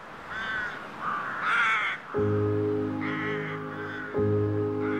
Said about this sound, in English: where the birds were signaling to all the crows that intended to sleep in this roost, hey, here's our roost, here's how you're gonna get in, just kind of check in into our funnel and then you can fly out with the group right over to the cemetery.